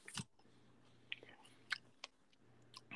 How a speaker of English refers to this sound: What you munching on over there? Oh, some Reese's sticks. You know, the ones I used to munch on at over at Harrison's.